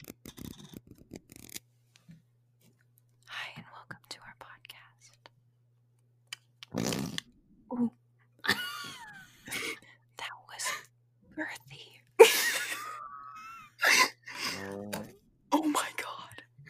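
A pink dollar-store toy fart noisemaker lets out several short, raspy, squeaky blasts, spaced out with pauses, after a stretch of quiet rustling and soft whispery sounds.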